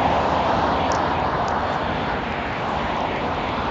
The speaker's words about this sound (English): Sorry. I'm assuming that the cars are really loud, so I'm talking around them.